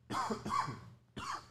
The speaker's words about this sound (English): God damn it. I know coughing is great for podcast. I know that people are like, hey, do that more often. Yeah. They're clicking back that little 10 seconds. They want to hear it again. I am still fighting these stupid harvest allergies.